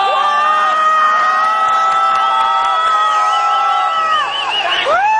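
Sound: crowd booing and jeering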